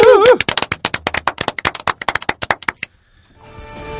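A short burst of brisk hand clapping from a few people, a quick irregular run of sharp claps lasting under three seconds, applauding a guest who prepared the segment to close it, followed by a faint musical tone fading in.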